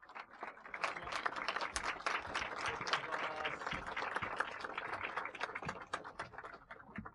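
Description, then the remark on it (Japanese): Sustained applause from an audience, dense overlapping claps with a steady, even intensity throughout, a warm welcoming ovation with a faint murmur of voices underneath, welcoming a moderator and director Kazuaki Kiriya onto the stage at a Last Knights event. “皆様大きな拍手でお迎えください。”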